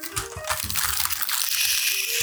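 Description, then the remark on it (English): A beer can being handled: light metallic taps and crinkles with liquid sloshing and fizzing inside, a steady, bright hiss that grows fuller over a couple of seconds. “This is my beer can.”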